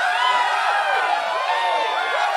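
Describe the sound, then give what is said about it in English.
A loud, dense crowd in a courtroom cheers continuously, many overlapping voices shouting and whooping at once in a steady roar with no pauses. “Why are they cheering?”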